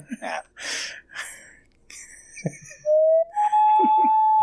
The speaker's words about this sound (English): There's the loon clock. It's right behind your video.